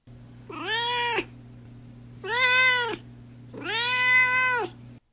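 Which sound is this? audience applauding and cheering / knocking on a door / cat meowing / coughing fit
cat meowing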